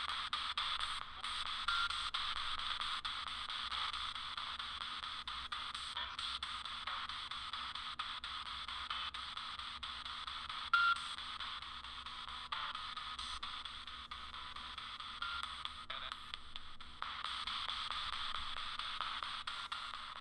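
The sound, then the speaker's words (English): Continuous hissing radio static from a spirit box fills the whole stretch, steady and fairly loud, broken by brief choppy dropouts and crackles as it sweeps, with no voices. “I'm still getting a lot of interference.”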